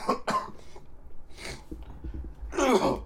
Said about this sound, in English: I know, it's disgusting. I'm sorry. I know. It's the perfect time to cough. Perfect time to get all of that out.